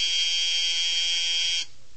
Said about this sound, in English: The three of us waited until the buzzer sounded. Then we marched into the classroom of Professor Thayer.